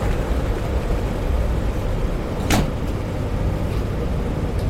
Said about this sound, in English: Step back. Door's closing.